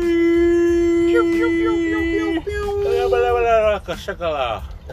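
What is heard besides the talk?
yawn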